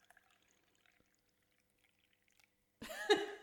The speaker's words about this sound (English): That's a teapot for everybody at home.